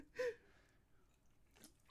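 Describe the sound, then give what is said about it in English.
A quick, wet slurp of soda, followed about a second later by a softer second sip, with no talking. “We were slurping soda.”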